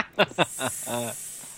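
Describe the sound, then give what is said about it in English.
A steady high hiss of escaping steam runs throughout, punctuated by several short, punchy bursts and a longer droning blast as the steam cannon fires. “With a massive pop from a steam cannon, there is magma at your feet, there is lava at your feet, shooting behind you”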